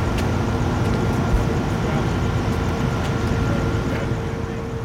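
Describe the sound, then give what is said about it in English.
A steady, loud low-pitched bus engine drone rumbles continuously as the bus travels on a freeway, with faint road noise and occasional soft clicks over the top. “The constant low growl of the engine is an imposing drone of noise.”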